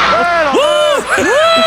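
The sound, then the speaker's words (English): A wrestling crowd cheers loudly as an elbow by Valentine misses, voices rising and falling together in swelling, arching cries that repeat about three times in quick succession. “Listen to the crowd.”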